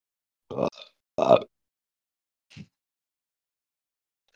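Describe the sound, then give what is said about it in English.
Two loud, guttural burps erupt in quick succession, followed after a short pause by a faint, brief throaty grunt, with silence in between. “I farted like 1 second before that burped.”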